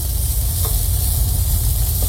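Speedie meat sizzles steadily on a hot grill, a continuous crackling hiss with a low rumbling undertone, fairly loud, with no voices.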